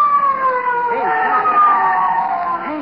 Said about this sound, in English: Hey, a police car. It's coming here.